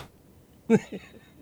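A single sharp slap to the face, as Jesus is put on trial, breaks the quiet, followed at once by a short pained vocal grunt and a second brief murmur, then near silence.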